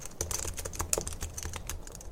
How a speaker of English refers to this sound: Popular triggers include whispering, like I'm doing right now, tapping, positive affirmations, you're amazing, or even random sounds like typing on a computer.